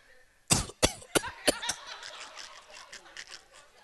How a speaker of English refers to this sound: Sheep and goat that are coughing.